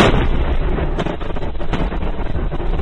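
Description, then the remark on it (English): Artillery shelling from Russia pounding Ukraine's southern border and its port of Odessa near the Black Sea rumbles in a loud, continuous low roar, broken by a few sharper blasts that punch through the din. No voices are heard. “That's Russia continuing to pound away at Ukraine's southern border, its port of Odessa near the Black Sea.”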